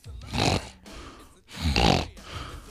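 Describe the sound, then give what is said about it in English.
A person loudly imitates the snoring of a man who snored too loud, two rough, rasping snorts with a short pause between them, harsh, with no speech around them. “she was saying that what both of the couples were saying, he snored too loud.”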